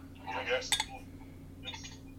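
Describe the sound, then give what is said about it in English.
Beer splashes and fizzes briefly into a glass, punctuated by a sharp glassy clink, then a second short burst of pouring, all over a low steady hum. “Don't we have to pour the beer?”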